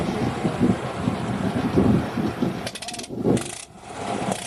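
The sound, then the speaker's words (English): A loud, steady engine roar from the Blackburn 1912 aeroplane, the oldest flying British aeroplane, with heavy rumbling and wind-like rushing. It surges partway through as a harsh high buzzing joins in, as the engine is run up from idle to high power after the wind-up signal. “The wind-up signal is given to move up to the high power.”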